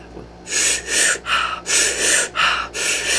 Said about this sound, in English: So instead of that particular breathing exercise, it's a two-part breath. So it's in through the belly, up into the chest, out the mouth.